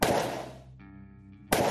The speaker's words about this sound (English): He sees something or someone moving in the shadows. Two shots ring out.